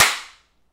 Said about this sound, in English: I'll say 1, 2, 3, and then you slap your hand, and that'll get a sync point for Ryan as close as possible?